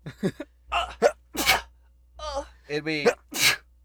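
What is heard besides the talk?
sneeze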